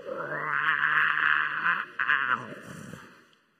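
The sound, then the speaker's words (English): A lion cub, backed into a corner by hyenas, lets out a weak little roar, a thin, strained, squeaky cry held for about two seconds with a brief catch midway, then trailing off into a faint growl. “So backed into the corner, he gets down and he goes to let out his biggest roar, and all you get is this.”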